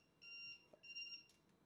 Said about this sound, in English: That was my timer for whatever reason. It was going off. But I stopped it. I'm sorry about that.